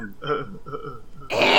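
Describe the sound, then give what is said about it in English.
A voice imitates clearing its throat: a low, guttural rumbling for about a second, then a harsh, breathy cough burst at the end, fairly loud. “I'm gonna cough. Like, I'm gonna clear my throat.”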